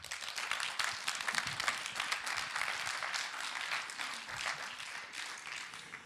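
A crowd claps steadily for several seconds, a dense patter of many hands at fairly constant loudness with no voices over it.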